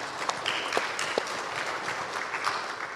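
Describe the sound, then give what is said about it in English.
An audience applauds the work of missionaries in Papua New Guinea: a dense, steady patter of many hands clapping at once, fairly loud and sustained for the whole stretch with no voices above it. “Yes, thank you, sir. You can clap for that.”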